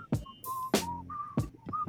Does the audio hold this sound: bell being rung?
no